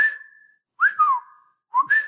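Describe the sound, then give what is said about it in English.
Birds whistling in three clear, shrill phrases: a long steady note, then a swooping two-part call, then a shorter rising-and-falling whistle after a pause. No one speaks. “… would get a bit more upset while the birds would continue whistling”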